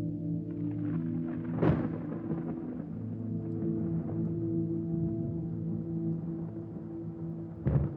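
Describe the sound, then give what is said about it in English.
Deep thunder rumbles steadily throughout, broken by two sharper cracking bursts, one early and one at the very end, over a low droning undertone. No voices. “Emerging from the storm clouds, a jet black dragon the size of a mountain.”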